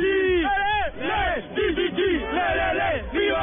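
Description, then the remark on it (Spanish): A large crowd celebrating a Chilean win at Plaza Italia in Santiago, Chile, chants and shouts for Chile in loud, overlapping voices, with rising and falling cheers in a rough rhythm that stays dense and energetic throughout. “Bueno, acá todo pasándola bien, gritando y gritando por Chile, cabros.”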